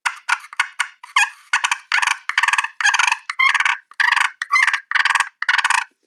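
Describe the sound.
A person imitates turkey fight calls: a rapid run of raspy, purring bursts, about a dozen in quick succession, loud, with no talking.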